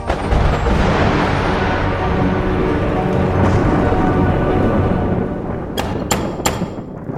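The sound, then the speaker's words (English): A loud, sustained crash of thunder rolls and rumbles for several seconds during a thunderstorm, then fades as a few sharp cracks snap in quick succession near the end. No one speaks. “But on the night of Bastian's third birthday, during the worst thunderstorm in over 100 years, everything changed.”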